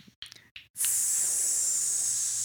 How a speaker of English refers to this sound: It started sizzling before the fire was on. Preheated pans.